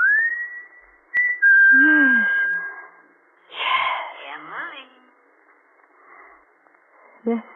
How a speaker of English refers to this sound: And you could stand in the orchard until you heard him whistle.